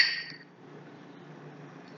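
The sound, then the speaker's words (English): A single bright clink of cocktail glasses touching in a toast, ringing briefly before fading into a quiet, low murmur. “Cheers, babe. Cheers, my love.”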